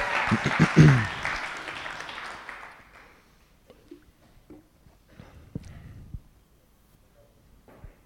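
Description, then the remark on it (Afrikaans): A short burst of audience applause, fairly loud at first and thinning out over a few seconds, followed by quiet with a few scattered knocks and shuffling noises. “Baie dankie, jy kan ons al een hande klap gee.”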